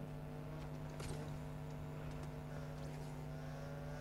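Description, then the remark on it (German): A motorcycle engine in a video game drones steadily throughout, a constant mid-pitched hum with a few faint clicks and rattles over it, fairly loud, with no talking. “Es kommt was. Es kommt was. Okay. Motorrad.”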